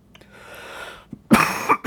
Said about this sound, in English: Excuse that cough.